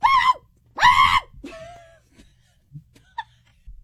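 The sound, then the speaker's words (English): A person voices two loud, shrill yelping barks in quick succession, imitating a dog, followed by a softer trailing whine and a few faint small sounds. “No, it's this loud screaming bark.”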